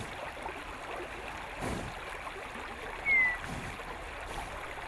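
river stream flowing

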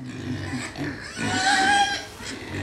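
pig grunting

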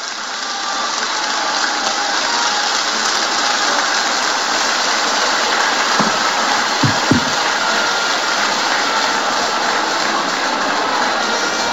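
crowd applause

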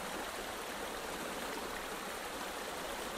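flowing river water

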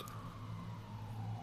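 emergency vehicle siren outside

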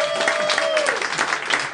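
audience applause

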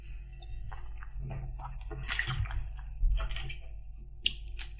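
drinking water

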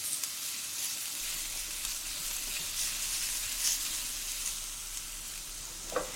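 food sizzling

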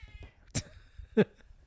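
cat meowing

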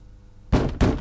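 knocking on a door

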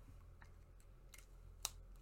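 pen writing on paper

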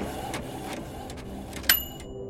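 3D printer running

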